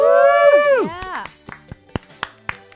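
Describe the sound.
A single person claps about eight times, sharp and slightly uneven in rhythm, right after a drawn-out voiced tone that slides downward in pitch.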